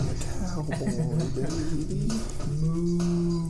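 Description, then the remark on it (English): A person imitates a cow, drawing out low, droning moos one after another, fairly loud, with the last moo held steady and long. “Yeah, that's all you see me doing is moo, moo, moo.”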